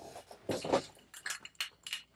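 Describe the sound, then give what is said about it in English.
Miller High Life decorative glass light bulbs clink and knock together as they are hung up, in a handful of irregular bursts, bright and rattly, with short pauses between the clusters and no talking. “He's gonna be hanging up his Miller High Life decorative light bulbs here.”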